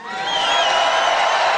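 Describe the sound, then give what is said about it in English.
A crowd of tens of thousands cheers at a NASCAR race as the president's limousine, the Beast, drives around the track, a dense, steady wash of roaring voices that swells briefly and then holds loud for the whole moment. “The crowd loved it.”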